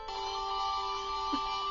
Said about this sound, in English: Just Google Kmart commercial Joe Boxer ring the bells.